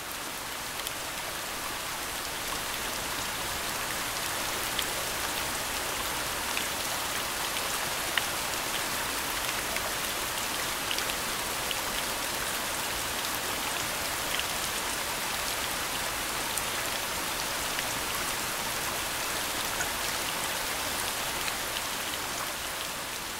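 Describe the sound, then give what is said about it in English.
Steady rain pattering on a surface from the rain track Nap Rain in the sleep section of the Sonic Spa in the Chill Factory app: a dense, even hiss of countless drops with occasional brighter ticks, continuing unbroken at a constant moderate level with no voices. “And before we leave the spa, let's play a quick clip from its most popular track, Nap Rain.”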